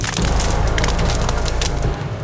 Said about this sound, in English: Soon the party heard the distinct cracking of branches.